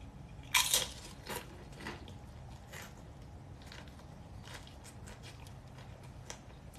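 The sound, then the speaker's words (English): A loud crunchy bite into a crunchy vegan fish burrito with sauce is followed by a steady series of softer crunching chews, with no talking. “Yeah, I'm making like a crunch burrito.”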